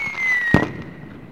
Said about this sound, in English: It's the end of year wrap up! Cannons. Horns. Fanfare. What are you... You're going off early. You're going off early.